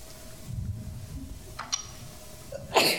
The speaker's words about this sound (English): Excuse me. Bless you.